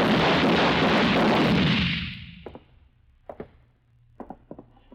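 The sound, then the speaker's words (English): A loud booming gunshot rolls out and fades over about two seconds, followed by a scattered series of sharp, quieter gunshot cracks, some in quick pairs. “The little fat man was lying on his back where two of my shots had knocked him.”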